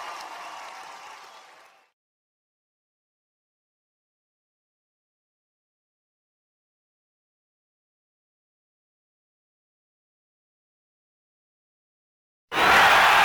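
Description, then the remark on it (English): A roaring wrestling arena crowd at Wrestle Kingdom 3 cheers and claps, then fades into a long stretch of dead silence as the feed goes to black, before the crowd noise bursts back in loudly at the very end as Lesnar runs up the ramp after Punk. “The feed quickly comes back up, and we catch Lesnar running up the ramp after Punk as the crowd explodes.”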